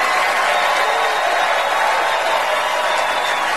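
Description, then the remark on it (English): Loud, sustained applause from a large audience giving Meryl Streep a standing ovation, a dense even wash of clapping that holds steady for several seconds with no one speaking over it. “Everybody, please join me in giving Meryl Streep a totally undeserved round of applause, will you?”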